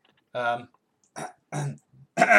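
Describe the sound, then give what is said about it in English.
A man makes four short, rough, guttural bursts, sounding like throat clearing, as an attempted vocal impression of an F1 car engine revving, with brief pauses between each push. “That was just you clearing your throat.”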